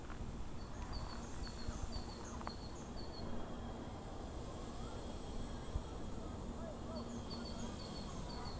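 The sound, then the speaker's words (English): Outdoor birdsong: high, quick chirps repeat in short bursts at the start and again near the end, over a steady, rushing background of ambient noise. “You hear the birds?”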